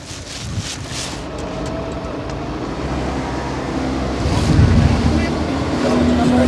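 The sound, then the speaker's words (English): A fishing boat's engine drones steadily as the boat backs out of a marina port and heads out to sea, its low hum mixed with splashing water and gusts of wind buffeting the microphone, growing slightly louder toward the end. “All right, we're loaded up in this boat. Yep. We're backing out of the port, heading out to sea.”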